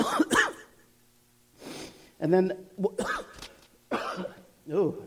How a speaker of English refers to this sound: there's a coughing contest today. I might win.